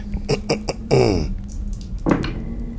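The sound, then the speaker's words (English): Three six-sided dice (3d6) clatter in a quick run of sharp, bright clicks as they are rolled in a dice game, then a short voiced murmur, and a second brief rattle as they settle. There is no clear speech. “Here, it is your turn to roll. Roll 3d6.”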